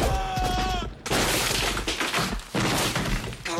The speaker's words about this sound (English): It cuts to him falling just like through open space, and then it cuts to the palapa right over Ponchito and Hawkins' head, and the guy comes crashing to the roof.